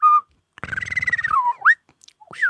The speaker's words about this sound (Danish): Vi har vidst i noget tid, at delfiner, de kendte hinanden på deres fløjt. Så har de hver især sådan nogle særlige individuelle fløjt, og så kan de kende hinanden på dem. Så fløjter de afsted.